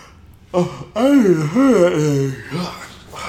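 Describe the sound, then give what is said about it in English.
A long, drawn-out yawn: a sharp breathy intake, then a voiced, wavering groan that rises and falls in pitch before trailing off into a softer exhale. “I hate that I'm yawning so much.”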